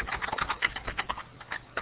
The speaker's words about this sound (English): You can hear me typing, I'm sure.